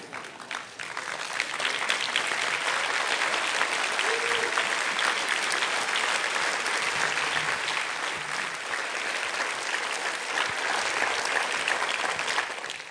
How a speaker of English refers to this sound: Now, I was going to ask you to stand and applause, but you've already applauded, so you can stand and applause and do it again.